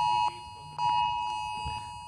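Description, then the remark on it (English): A smartwatch alert beeps insistently, a steady high electronic tone broken into a few long pulses, clear over a low, muffled background. “is your watch going to explode?”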